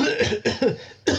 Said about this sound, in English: Don't worry. It's just a cough.